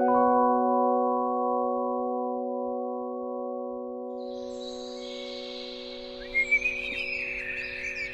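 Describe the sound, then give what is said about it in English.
A steady low humming drone fills the first half, then a run of high, chirpy whistled notes imitating a robin's call rises over it, quick warbling phrases at moderate loudness with no talking. “Number 4, I'll learn a bird call and try to schmooze with some birds.”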